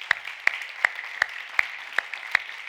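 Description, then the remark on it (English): A church audience applauding its volunteers: a steady wash of clapping with sharp, louder claps cutting through at an even beat, about seven in under three seconds, and no voices. “Would you guys clap for them?”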